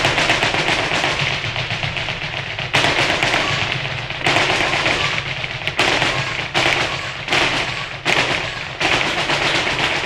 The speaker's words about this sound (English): No, that's not the sound of rapid gunfire. I haven't been out shooting or anything like that. It's actually the sound of something called taconeo. What is taconeo? Well, it's the fancy flamenco footwork.